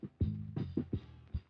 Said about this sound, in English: Then he goes to the refrigerator for more juice. Click, bang, like a gun. That's the refrigerator door.